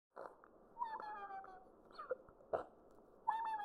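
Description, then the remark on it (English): A baby sea porcupine inside a tube hiccups, short squeaky gulps mixed with thin whistling chirps, spaced irregularly over a soft noisy background with no talking. “Inside the tube, the baby sea porcupine hiccups, curls back into a fuzzy ball, and falls asleep.”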